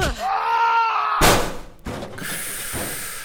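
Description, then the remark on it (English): A guard lets out a rising, strained yell for about a second as he is kicked backwards, cut off by a loud impact and a harsh crunching thud as he slams into the stone wall of a tower, followed by scraping, gritty noise. “The guard felt as light as a football under her boot and flew backwards with a yell, pancaking against the stone wall of the tower with a sickening crunch.”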